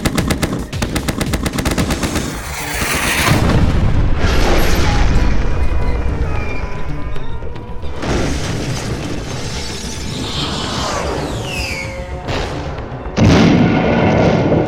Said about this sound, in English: Box 3. Air-to-ground missile launched. Claim separation.